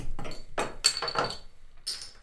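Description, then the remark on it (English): Cans of a hoppy beer being cracked open: a handful of sharp pops and brief fizzing hisses in quick, irregular succession, with a faint metallic clink in between and no talking. “Let's crack these open.”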